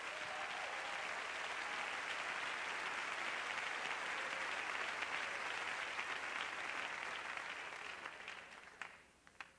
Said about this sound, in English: If you believe that, clap your hands to the Lord.